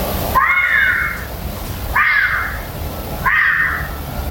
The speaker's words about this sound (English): YouTube vixen screams, it's the same sound, says Dean.